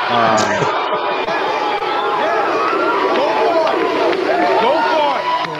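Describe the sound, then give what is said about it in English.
A loud, steady crowd clapping-and-cheering sound effect played on a live show: many overlapping shouts and whoops with a wash of applause underneath, sustained without pause for about five seconds. “Oh, we got still got the claps.”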